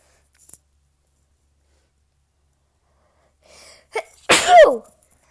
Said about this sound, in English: I gotta sneeze.